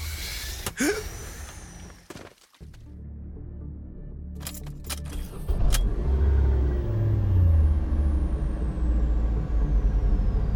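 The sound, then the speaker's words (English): A Walzon van rolls along the highway on a sunny day with a steady low engine rumble and road noise, preceded by a few sharp clicks and hissing bursts, with a faint high whine drifting downward later. “I'm sitting in a Walzon van with this huge smile on my face.”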